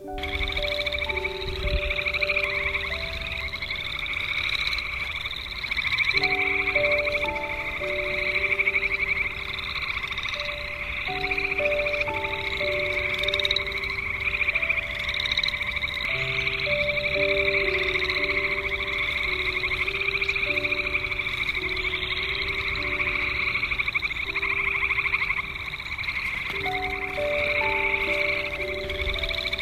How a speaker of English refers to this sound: And to close out today's show, just take a minute, keep listening, and enjoy a chorus of frogs.